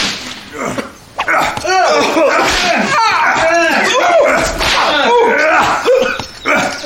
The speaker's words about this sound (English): I'd whip you more, but I need you able to work.